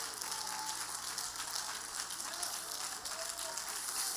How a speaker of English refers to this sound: If you want to believe that, clap your hands to Jesus and give him praise this morning.